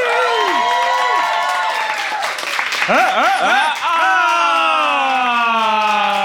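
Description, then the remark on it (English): A crowd claps and cheers steadily for several seconds for the one-year birthday of SpecScript, with loud whoops and rising and falling shouted voices layered over dense, continuous applause. “And let's give a round of applause for the one-year birthday of Woo! SpecScript.”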